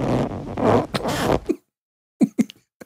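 A long, loud, sputtering fart rumbles for about a second and a half, then after a pause come three short, separate little fart bursts, the last one tiny.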